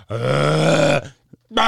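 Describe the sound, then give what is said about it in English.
A single long, deep burp rumbles for nearly a second with a low, buzzy, throaty tone, then a short pause, a faint click, and another loud sound starting just as it ends. “If I were to do Foley for a burp, that would be the one that I would be like, come on, let it be this one.”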